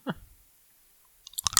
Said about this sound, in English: I wonder how much of this thing clicking on my teeth is going to come through. I was wondering the same thing.